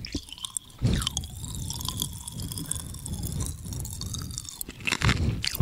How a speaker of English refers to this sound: Can't help. He's got to chew it. It's just so good. It was just so tasty. He can't help himself. He can't resist any food.